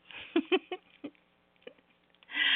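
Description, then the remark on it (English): Rain patters on a roof on a wet, dreary, cold day in irregular, scattered taps, a few louder drops standing out over a quiet background, before a steady hissing wash swells at the end. No voices. “I'm happy you're here. With rain on the roof.”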